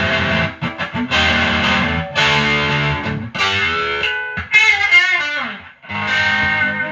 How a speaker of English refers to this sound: I like to get the distortion knob around the, like, 8 o'clock area, 9 o'clock, kind of. Oh, so you can bring it back and almost use it like an overdrive. Down. Yeah, because I dig the kind of lo-fi overdrive sound it got.